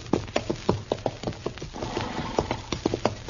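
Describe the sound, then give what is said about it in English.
A horse's hooves stomp steadily on dry, dusty ground in Kansas in a quick, uneven rhythm, fairly loud, with a faint low rumble underneath. “Darn horse. Seems he's just bound to stomp all the dust in Kansas in my eyes.”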